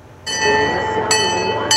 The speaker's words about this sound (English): It's been a holiday tradition for decades. But will the Stanley Park train stay on the tracks this year?